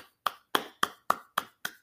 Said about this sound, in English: Awesome. We are just clapping there.